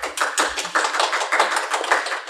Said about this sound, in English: So thank you all for coming out. Get a nice round of applause here.